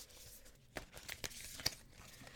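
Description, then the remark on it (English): A deck of oracle cards, the Divine Feminine Oracle deck, being shuffled for a card reading: a soft, continuous papery rustle broken by several sharp, crisp snaps of cards slapping together, fairly quiet with no voices. “I'll just give it a shuffle.”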